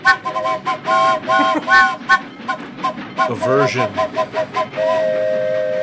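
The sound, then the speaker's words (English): A train whistle is blown in a room, sounding loud in a string of short, chord-like toots that end in one longer sustained blast, with voices talking faintly underneath. “You need to watch this asshole with the train whistles.”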